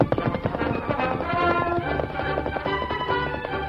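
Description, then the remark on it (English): The Lone Ranger's stallion Silver gallops at speed to overtake a slow westbound train, hooves clip-clopping in a quick, steady rhythm beneath loud, stirring orchestral music that fills the whole stretch; no one speaks. “It was no great task for the Lone Ranger on the mighty stallion Silver to overtake the iron horse.”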